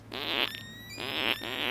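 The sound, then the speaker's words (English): A short tune made of fart sounds: three buzzy, sputtering blasts in a rough rhythm, with a thin sustained tone running above them. No one speaks. “But first, true story, I wrote that melody as well, with the farts.”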